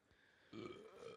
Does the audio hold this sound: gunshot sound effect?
no